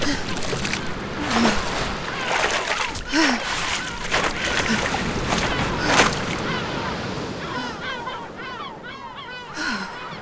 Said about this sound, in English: Never had I heard the sound of the sea. Rushing, breathing.